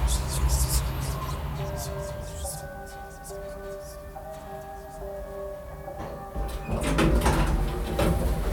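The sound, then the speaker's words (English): The doors of an old elevator with dual doors, one in front and one in back, slide open with a low mechanical rumble and a steady electrical hum, framed by brief clattering bursts near the start and again toward the end, moderately loud. “When the doors opened, I wasn't in our building.”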